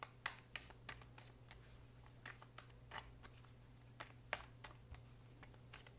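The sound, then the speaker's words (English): Quiet handling of a tarot deck: a series of crisp, papery snaps and flicks at irregular intervals as the cards are fanned out and slid apart, over a low steady hum with no talking. “I'm just going to fan these out.”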